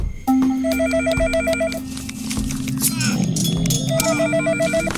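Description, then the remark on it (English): A telephone ringing on an outgoing call, heard through the line as two bursts of rapid, trilling electronic rings separated by a pause, over a steady low hum and some background noise. “I'll just pick up the phone and give him a call like this”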